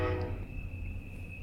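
A train rumbles past in the background, its horn sounding a sustained, harmonic blast at the start that fades as a steady tone continues over the low, heavy rolling noise.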